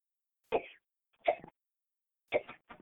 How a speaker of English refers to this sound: Why? Are you coughing? Okay.